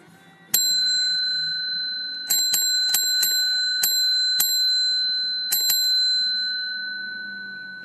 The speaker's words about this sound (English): Haven't had the bell for a while. That's the baby bell in the because I'm in the Toyota.